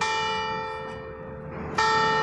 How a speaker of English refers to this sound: When the clock at the courthouse struck noon on April 20th, 1948